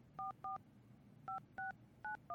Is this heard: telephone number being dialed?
yes